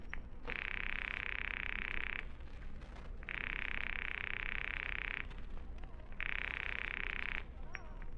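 A telephone line rings three times as a call is placed to an office, each buzzy, steady ring lasting about two seconds with short pauses between, over a faint background hiss and no talking.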